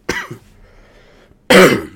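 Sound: cough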